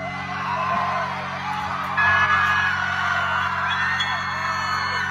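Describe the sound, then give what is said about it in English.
A large concert crowd cheers continuously in response to a kid, a dense roar of voices with scattered whoops and yells rising above it, loud and sustained throughout without a break. “That's overwhelmingly cheering in response to the kid.”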